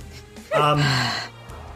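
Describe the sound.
A person voices a single drawn-out, breathy gasping roar imitating an approaching creature called a resin seep Zul'Gat, rising and straining for under a second before trailing off, with no other sounds around it.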